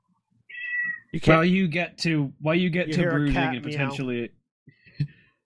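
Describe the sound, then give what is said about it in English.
A human voice imitates a cat meowing from inside, behind a closed door: a few drawn-out, wavering meows, fairly loud, with a short, softer sound trailing at the end. “You Gent the character, hear a cat meow as you lean up against the door.”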